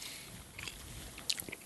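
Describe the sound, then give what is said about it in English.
Quiet mouth sounds of someone chewing a minty stick of gum, with soft wet clicks and a few sharper smacks scattered across a short stretch; no talking. “I don't like the stick form factor because I feel like these smaller bars are easier to get your initial chew on.”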